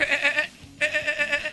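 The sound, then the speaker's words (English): A man imitates a dolphin's chattering call, doing a Flipper impression, in two bursts of rapid, high-pitched warbling, loud, separated by a short pause. “I'm going to do my best flipper impression.”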